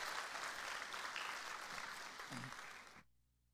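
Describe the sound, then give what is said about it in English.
A large audience at a church service claps hands in praise to the Lord in dense, continuous applause, loud, then cuts off abruptly near the end. No one speaks over it. “Let's give the Lord another hand clap of praise.”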